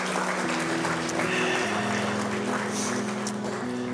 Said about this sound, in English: Yeah, I think we can clap for that. I think that's good.